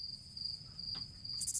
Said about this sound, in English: That's your third crickets, I think, this episode.